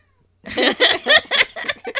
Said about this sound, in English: I'm just saying I know what it's like. You're upsetting the cats.